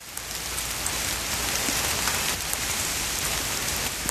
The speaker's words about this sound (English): It's raining in Lismore again. I'm here in a car